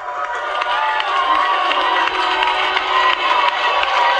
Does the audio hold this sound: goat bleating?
no